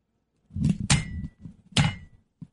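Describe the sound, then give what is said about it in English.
A head thumps against a wall three times in quick, uneven succession, each blow a dull, heavy knock, followed by a softer tap at the end. “Pardon me while I bang my head against the wall.”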